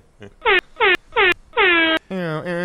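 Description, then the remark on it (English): A loud air horn sounds in four sharp blasts, three short and evenly spaced, then a longer one, followed by a sustained, wavering lower tone. “There was an air horn.”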